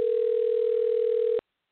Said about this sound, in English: Excuse me. The phone's ringing.